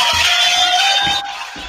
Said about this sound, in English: But I believe if you keep the applause going, ladies and gentlemen,